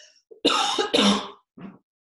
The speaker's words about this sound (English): Excuse me a second, I'm going to cough.